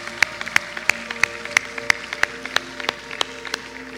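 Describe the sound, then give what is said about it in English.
An audience gives God a round of applause one morning, clapping together in a steady, even rhythm, about three sharp claps per second, over soft sustained musical tones. No one speaks. “Hey, can we give God a round of applause this morning?”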